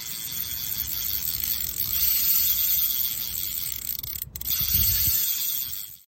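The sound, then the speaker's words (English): A fishing reel cranks steadily for about six seconds as the line is brought in for a bait check, a dense mechanical whir with a hissy, ratcheting texture. It stops for a split second partway through, resumes, then winds down at the end. “Bring that line in, make sure it's completely stacked, get it back out there.”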